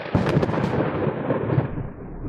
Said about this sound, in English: Just as Lawrence spoke, there was a sharp clap of thunder, despite the fact that it had previously been a bright, sunny day. Must be a summer rain shower.